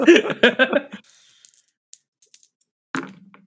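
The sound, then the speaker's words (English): Dice clatter and rattle across a hard surface, followed by a few scattered small clicks as they settle, then one more sharp clack near the end; the roll comes up 11. “That is an 11 on the dice.”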